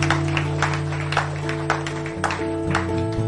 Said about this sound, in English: For the rest of us, friends, maybe we can give these guys a round of applause who have given their lives to the Lord.